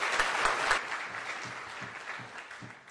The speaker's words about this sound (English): It's a great honour to be addressing this August gathering and welcoming Mr. Rahul Gandhi, President of the Indian National Congress, to the LSE and to the UK today. Can I please have a round of applause?